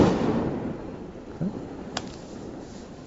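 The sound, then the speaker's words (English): Muffled booms of explosions like fireworks going off outside, one rumbling burst fading at the start, then two sharper pops a moment apart, with no one speaking. “For instance, these explosions.”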